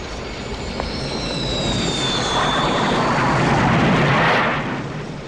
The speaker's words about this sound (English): No helicopter can fly faster than sound. Airwolf can. Basically, Airwolf is an aerodynamic lifting body with a twin turbine-driven rotor system, capable